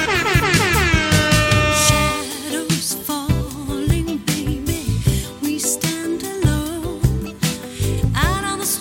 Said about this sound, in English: That deserved an air horn.